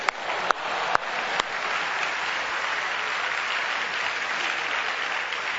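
An audience breaks into steady applause, a dense wash of clapping with a few sharp individual claps standing out at the start, holding at an even, fairly loud level throughout.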